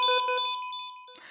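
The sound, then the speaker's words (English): Electronic alarms beep together: a rapid series of pulsing tones over a steady high-pitched tone, the pulses growing softer before a short burst of noise cuts in at the end. “It's hard to pay attention with all these alarms?”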